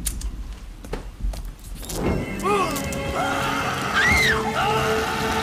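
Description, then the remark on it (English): A rough, rushing noise gives way to a man's loud screams as he is set on fire after being doused with lighter fluid, several drawn-out wails rising and falling in pitch over a steady noisy background. “And he's like fucking screaming”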